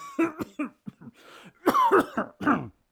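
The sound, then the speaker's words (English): A man coughs in a prolonged fit: several short hacking coughs, then a louder cluster of harsh, throaty barks near the end, with no talking. “Come, we will go back ere it is too late. Your cough.”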